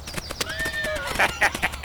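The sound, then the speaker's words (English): A horse named Thunderbolt lets out a shrill, wavering whinny, then hooves clop several times in a steady, moderately loud rhythm on a hard surface. “I'm surprised you haven't fallen to your death yet, that crazy horse of yours.”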